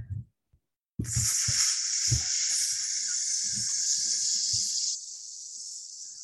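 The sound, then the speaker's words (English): A grill ignites with a sudden whoosh, then a loud, steady sizzling hiss holds for several seconds, dropping slightly in loudness near the end, with low thumps and clicks underneath. “I'm going to start up this grill real quick.”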